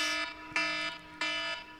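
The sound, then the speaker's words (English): A timer alarm beeps in a steady repeating pattern, about three loud electronic pulses with short gaps between them, with no one talking. “That's the timer.”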